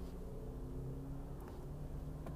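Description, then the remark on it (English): A truck engine revs with a steady, low, droning rumble, holding its pitch for a couple of seconds, with a couple of faint clicks near the end and no voices. “Oh, I jump in front of this truck.”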